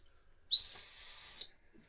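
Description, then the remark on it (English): A single sharp, sustained referee's whistle blast for half-time in a football match, lasting about a second, high-pitched, with a slight dip midway before it cuts off, then silence. “In fact, all of our four-legged friends were just getting into their stride when the half-time whistle went.”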